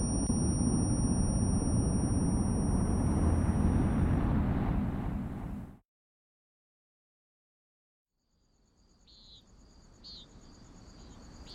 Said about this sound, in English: It was early morning. Birds were chirping, crickets were singing.